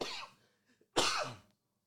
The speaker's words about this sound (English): Again, I don't know why I got on the mic. I was fine. As soon as I opened up my mic, I started coughing. But that's all right.